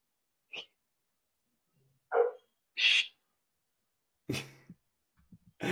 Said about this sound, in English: hold on a second, my dog's barking. Hey!